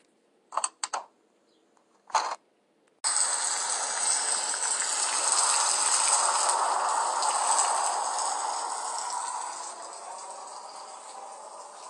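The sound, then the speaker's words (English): A few sharp knocks, then heavy storm rain suddenly begins pounding a blacktop driveway, a dense, steady hiss that holds for several seconds before easing slightly. No one speaks. “The rain hit the blacktop of my driveway hard.”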